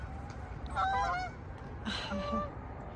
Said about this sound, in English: The Canadian geese.